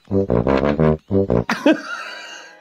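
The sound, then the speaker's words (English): A fart: a string of low, buzzy, tonal blasts, four quick ones, a brief gap, then two more, ending in a loud, spluttering, noisy burst that rings out and fades. “It's a fart.”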